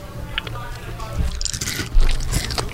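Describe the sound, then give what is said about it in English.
Crunching and chewing as crickets are eaten, with a series of crisp, uneven bites and moist squishy mouth sounds, fairly loud and clustered in bursts, with faint voices in the background. “Like, I dropped all my crickets.”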